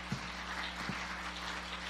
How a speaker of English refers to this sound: Come on, somebody give the Lord a big hand clap today.